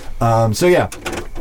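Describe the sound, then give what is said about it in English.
A voice imitates a creaking door swinging open: a steady, buzzing drawn-out tone followed by a shorter sliding groan, fairly loud, then trailing into soft breathy noise. “You open the door”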